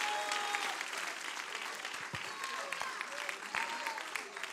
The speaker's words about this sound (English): Would you clap your hands and give God a crazy praise?